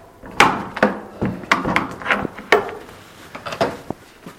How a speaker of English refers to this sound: I'm just going to shut this door.